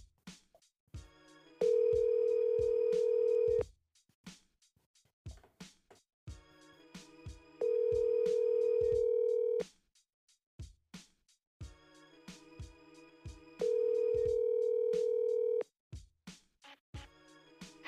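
Ringback tone of an outgoing phone call: three steady, mid-pitched electronic rings, each about two seconds long, separated by roughly four-second pauses, with faint clicks and other sounds underneath and no talking.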